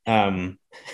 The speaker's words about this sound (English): can you hear my dog snoring right now? It is so loud and I have headphones on.